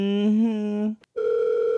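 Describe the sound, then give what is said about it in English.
A dial-up modem starting to connect: a buzzy, steady phone-line tone, a brief click of silence, then a second, higher electronic tone humming on. It is loud and has no talking over it. “Remember, you would get that notification, and then you would try to refresh it as soon as possible, but the stupid dial-up would take so long.”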